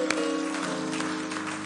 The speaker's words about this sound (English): Hallelujah. Clap for God.